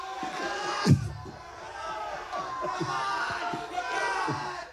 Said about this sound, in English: Now, I want all of you in the crowd to say, "Come on